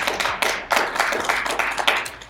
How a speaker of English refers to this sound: a round of applause for taking part in this Q&A.